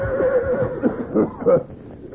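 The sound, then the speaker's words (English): A frightened horse whinnies in a shaky, wavering series of high-pitched pulses lasting a couple of seconds, moderately loud, with no talking over it. “Better lead the horses. Pretty scared.”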